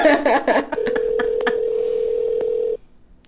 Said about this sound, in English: What if he answered and be like, what? Again? All right, he ain't picking up the phone.